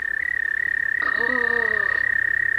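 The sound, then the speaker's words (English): An American toad gives a long, steady, high-pitched musical trill that runs unbroken from start to finish, clear, with a brief lower warbling sound overlapping it midway. “Let's listen to the call of the American toad.”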